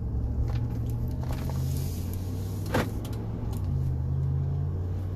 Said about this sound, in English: Pulling out of my development. High rate of speed.